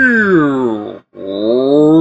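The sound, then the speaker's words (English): A person imitates a cow moo toy, a stick-like toy that moos when flipped upside down, with two long, groaning vocal moos split by a short pause. The first slides downward in pitch, the second rises again, both loud and droning. “The ones that are supposed to sound like cows and stuff.”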